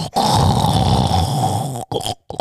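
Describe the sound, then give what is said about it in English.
A person imitates snoring with one long, loud, rattling snort held for nearly two seconds, followed by a couple of brief breathy sounds. “Those were snoring sounds”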